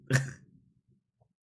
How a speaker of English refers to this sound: Let's get into it while I'm still having this cough.